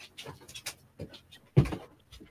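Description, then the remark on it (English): A puppy pants in quick, breathy bursts with small whimpers, followed by one louder, fuller whine before the panting resumes softly. “Oh, I'm just bringing a little puppy in.”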